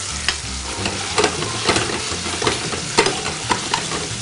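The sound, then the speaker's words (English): A whole bunch of sage leaves, dropped into hot oil where tomatoes are cooking, sizzle steadily as the water in the herbs boils out: a dense crackling hiss with frequent sharp pops and spatters scattered throughout, fairly loud, with no voices. “And again, it's gonna bubble up a little bit. That's all the water that exists in the herbs that are just boiling out of the oil.”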